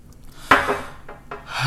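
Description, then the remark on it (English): A cup knocks sharply against a hard surface, followed by a few soft sipping and swallowing sounds from someone taking a drink. No one speaks. “I'm going to take another sip.”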